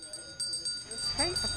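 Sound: hand bell ringing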